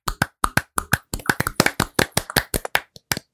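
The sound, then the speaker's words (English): Hand clapping from a couple of hosts clapping it out at the end of a bracket: a quick, slightly uneven run of sharp claps lasting a few seconds, fairly loud with no talking over it. “And as we do at the end of every single bracket, we are going to clap it out.”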